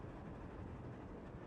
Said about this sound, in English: The train keeps moving along, and soon they come to the other side of the bridge.